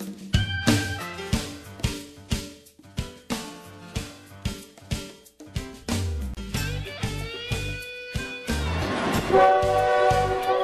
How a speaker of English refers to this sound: Home sweet home. Want to make you feel at home. Train running right by your window.